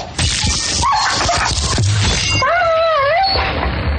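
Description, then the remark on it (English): A played-back recording of a dog dying: the dog whimpers and yelps in high, wavering cries over a noisy, muffled background, the pitched whines rising and falling in a drawn-out sequence near the end. “Well, no, I'm just saying I have, like, audio of how he died.”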